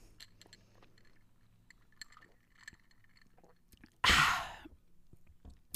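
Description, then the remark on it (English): Someone sips Diet Dr Pepper mixed with Don Julio tequila from a glass: soft mouth noises and small clinks, then a sudden loud, breathy burst near the end that fades quickly. No one speaks. “Hold on, let me take a sip.”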